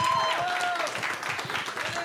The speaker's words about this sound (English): So please give them a round of applause for their bravery, for their awesomeness, for their talent, because this shit is what it's about right here.